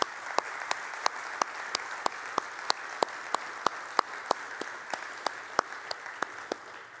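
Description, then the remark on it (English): An audience applauds Pastor John, a dense, steady wash of many clapping hands with sharper claps standing out at an even beat, about three per second. No one speaks. “So can we just give Pastor John a hand of applause?”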